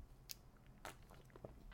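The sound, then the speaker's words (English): Someone sips ice-cold water from a glass filled to the brim, quiet, with three brief wet gulping clicks spaced across a couple of seconds and no talking. “Let's take a sip.”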